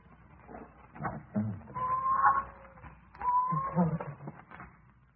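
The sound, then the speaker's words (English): A cat yowls twice inside a house in long, drawn-out wailing cries, the second slightly shorter, moderately loud over a low background rumble. “I'm going through the house and find that cat,”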